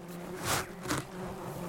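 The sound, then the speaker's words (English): March flies buzz, their droning hum swelling twice as they pass, over a steady outdoor background on a beach edged by tea tree forest, with no talking. “As we're luxuriating on the beach, completely alone, despite the incessant march flies buzzing around us,”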